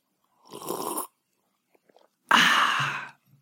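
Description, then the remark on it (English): Two breathy sounds with no talking: someone takes a soft slurping sip of whiskey, a pause, then a louder, longer airy exhale after it. “And with that, I take a sip of my whiskey.”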